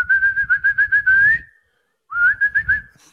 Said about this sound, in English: Solid whistle.